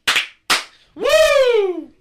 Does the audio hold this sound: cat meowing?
no